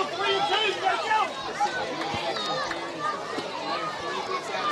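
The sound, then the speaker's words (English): A lively crowd at a Little League baseball game one night fills the air with steady overlapping chatter and excited children's voices, a constant busy babble with high-pitched shouts rising now and then. “As you can tell, we have a lively crowd here as well tonight.”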